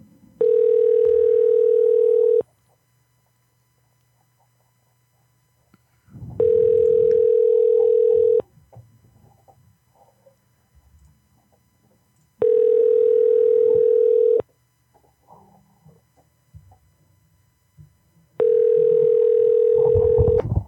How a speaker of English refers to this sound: Mickey D's, pick up the goddamn phone.